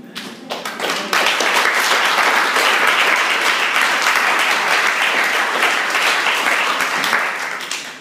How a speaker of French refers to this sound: Mais, en fait, peut-être ce qui m'énerve, c'est que tout d'un coup, on applaudit comme si c'était un truc incroyable. C'est normal.